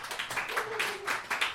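An audience at a roast claps to vote for who won, in a dense, steady patter of many overlapping hand claps, bright and crackly, sustained evenly throughout with small surges, no voices standing out.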